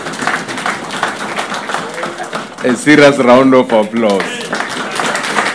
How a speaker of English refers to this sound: A round of applause for our musicians.